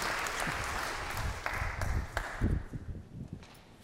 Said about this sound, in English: If you agree, would you please join me with a round of applause? Thank y'all.